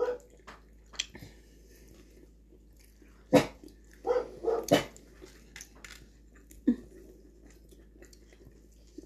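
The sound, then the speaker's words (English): A dog barks in a few sharp, irregular bursts, one loud bark followed by a quick cluster and a final bark, with quiet stretches between. “Somebody else barks and Sadie has to go mad.”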